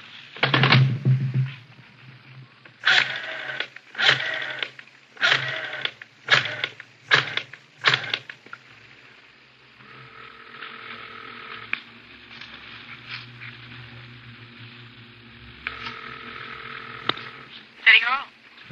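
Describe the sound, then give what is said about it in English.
A telephone on a kitchen table is dialed to call a police crime lab, a run of evenly spaced clicks and whirs, followed by a steady, fairly quiet ringing tone on the line that continues to the end. “I want to call in anyway. Do they have a phone here?”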